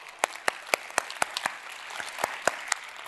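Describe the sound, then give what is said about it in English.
Audience cheering and applause for the announcement of $35 million given to missions, sharp claps landing at a quick, even beat over a soft wash of crowd noise, no single voice standing out. “Can we cheer for that?”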